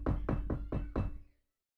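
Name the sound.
knocking on a door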